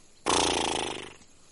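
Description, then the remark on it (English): A single harsh, raspy zebra call, apparently imitated by a human voice, bursts out loudly, a rough braying sound lasting about a second before tapering off. “This is a zebra.”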